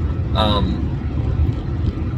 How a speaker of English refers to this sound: And I'm so thankful to be getting my car back, which I'm driving now, but I'll have it back fully because she'll have hers back tomorrow afternoon.